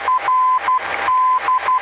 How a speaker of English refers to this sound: But let's say we identified it. We want to hear the Morse code.